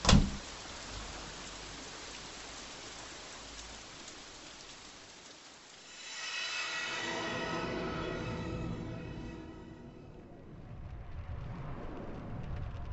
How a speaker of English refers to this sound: Let me get out of the rain.